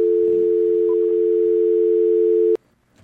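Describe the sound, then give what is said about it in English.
A steady, continuous telephone dial tone hums loudly for about two and a half seconds as a phone is checked because the phone lines are not working, then cuts off abruptly with a click, leaving faint background noise. “Maybe I should check out the phone.”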